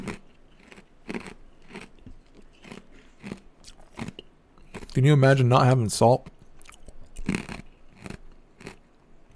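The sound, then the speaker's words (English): Loud, close-up crunching of ice being chewed right into a microphone, sharp irregular cracks repeating throughout, with a man briefly speaking in the middle. “Sorry for chewing ice right into the fucking microphone”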